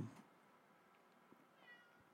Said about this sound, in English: God damn, my fucking cat's meowing at the door.